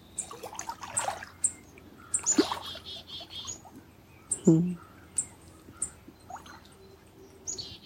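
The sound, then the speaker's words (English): Birds chirp outdoors in scattered, short bursts over a soft trickling background with a brief low vocal murmur midway. “Feeling the sweetness of the birds.”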